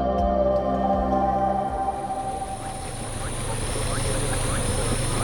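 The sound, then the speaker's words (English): A small boat with a roof of solar panels moves through a mangrove forest at a national park in Sarawak, Malaysia; its motor hums steadily and low beneath a constant wash of water, while faint bird chirps rise intermittently in the background. “At a national park in Sarawak, Malaysia, environmental scientist Danilo Manolo rides a small boat equipped with a roof of solar panels through a mangrove forest.”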